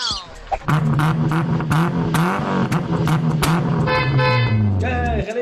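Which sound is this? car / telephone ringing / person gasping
car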